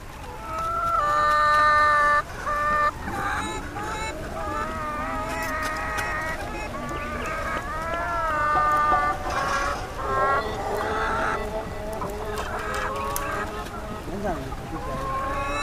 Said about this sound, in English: Their cargo consisted of chickens in stacked cages, and the chickens were making the most unearthly, unchicken-like mewling sounds.